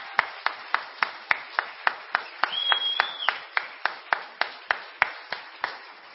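Steady, rhythmic clapping in an even beat, about four claps a second, with a brief high whistle partway through; no one speaks. An audience applauds all the performers at the end of the evening.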